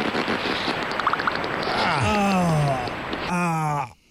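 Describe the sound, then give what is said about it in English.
A beaver farting underwater: a burbling, watery rush followed by two drawn-out, droning blasts with a wavering pitch, loud, then an abrupt stop. “Beavers do fart in the water.”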